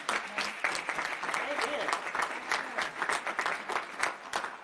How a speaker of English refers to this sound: And I think you ought to give them a round of applause for that.